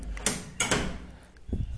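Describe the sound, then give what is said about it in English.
A door is pushed shut: a couple of sharp clacks and a scraping rush, followed by a softer low thump as it settles closed. No one speaks. “My door is open, I'm sorry.”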